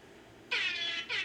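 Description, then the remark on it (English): Two loud, brassy air horn blasts: a longer one of about half a second, a short gap, then a briefer second blast. Bright and harmonic, with no speech. “Air horn in my Kobe death conspiracy.”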